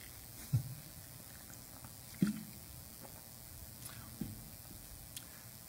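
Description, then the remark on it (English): Quiet liquid sounds: a few soft, wet gulps or sips of water spaced a second or two apart, with faint sloshing of water and no talking. “Sorry, I need some water.”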